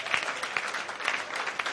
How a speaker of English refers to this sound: Clap your hands with a clap offering in church. What a joy.